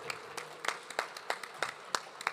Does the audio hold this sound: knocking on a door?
no